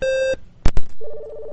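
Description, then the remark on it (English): Telephone line sounds as a caller is put on hold and another call is conferenced in: a steady electronic tone cuts off, two sharp clicks follow like handset or hook switching, then another tone resumes, fairly loud with no voices. “I'm going to put you on hold for a minute”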